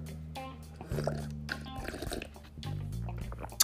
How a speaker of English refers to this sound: Let me sip on some of this tea. Hold on.